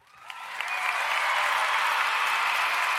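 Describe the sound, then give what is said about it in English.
Applause swells in from a few scattered claps into a dense, steady round of clapping that holds loudly for the rest of the moment, with no voices over it. The round of applause is one the speaker gives himself. “I'm going to give myself a round of applause, man.”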